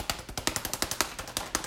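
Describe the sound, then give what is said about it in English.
A fly swatter slaps a man's bare buttocks, going back and forth at high speed in a fast, steady flurry, about fourteen sharp smacks in under two seconds, crisp, with no voices over it. “This is the sound of a fly swatter going back and forth on Garrett's ass at high speeds”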